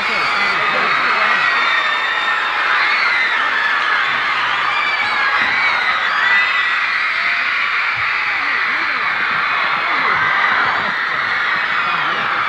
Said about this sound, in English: But this, I never heard or saw such bedlam in my life. Yeah. Now, when they're finished, the screams keep going on.